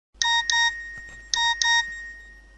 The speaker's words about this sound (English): It was the message alert on her cell phone once again.